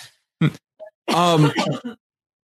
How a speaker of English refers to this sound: No, I'm coughing.